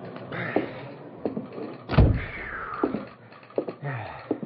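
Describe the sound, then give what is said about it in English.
Heavy footsteps thump across the hollow wooden floor of a sidetracked freight car serving as a telegraph office in Medicine Hat, as a man in a raincoat stomps in from the rain; a door slides and bangs shut midway, followed by a few more scattered steps. Fairly loud, with no talking. “Dave shook the water from his raincoat and stomped into the sidetracked freight car that served as a telegraph office.”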